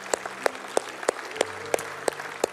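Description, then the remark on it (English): A church audience applauds God in steady, rhythmic unison, about eight crisp claps at an even beat, with a low sustained hum underneath and no talking. “Let's give God a round of applause today, can't we?”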